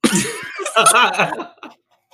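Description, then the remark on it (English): A fairly loud throat-clearing cough: a rough, gravelly run of voiced bursts lasting about a second and a half, trailing off into quiet with one faint short sound at the end. “Yeah, I gotta clear my throat too.”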